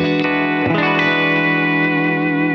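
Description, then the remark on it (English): An overdriven electric guitar played through a darker, warmer custom-blend cabinet rings out a loud, sustained chord after a quick bend near the start, its tone dark and smooth with the bright top end rolled off. “If somebody wanted maybe to add a little bit of overdrive to that sound, wanted, you know, no hint of fizz or hair on the top, that's what I was thinking.”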